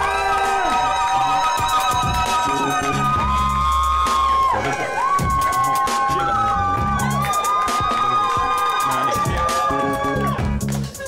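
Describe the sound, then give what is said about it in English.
A live audience cheers and whoops loudly and continuously, a dense wall of crowd noise with excited shouts and high screams rising over it throughout. “You know, I'm cheering a little too loud for”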